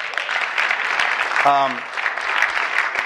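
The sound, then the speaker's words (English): An audience applauds with steady, dense clapping throughout, marking the 30th anniversary of a guest's syndicated column, and a single voice briefly cheers or calls out in the middle over the sound of the hands. “Feel free to applaud.”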